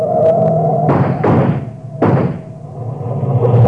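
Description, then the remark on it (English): A car crashes and overturns: three heavy, crunching impacts in quick succession over a steady low engine rumble that continues afterward. No one speaks. “Hey, they turned turtle.”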